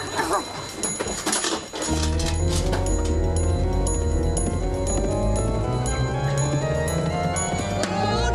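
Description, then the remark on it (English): After a short burst of noisy rustling, a clock chime rings out loudly at 11 o'clock, its resonant bell tones overlapping and sustaining in a steady, ringing wash until the end. “Oh, my God, it's 11 o'clock!”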